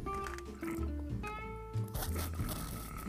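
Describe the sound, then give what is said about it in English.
Someone slurps from a cup as ASMR, a wet, squeaky sipping noise with a few gurgling pulls over about three seconds. “Sipping on a cup.”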